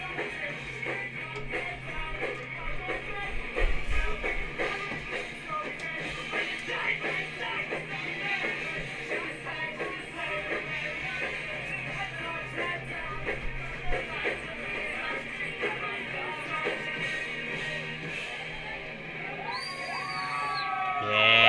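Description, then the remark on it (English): A large crowd screams and yells continuously at a live concert, a dense, steady roar of many voices that swells near the end as higher cries rise above it. “Some screams.”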